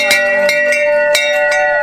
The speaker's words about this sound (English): So in January of 2019, I went down to Phoenix and I ran the 24-hour across the U.S. running race. Yeah, you heard that bell. 100 miles.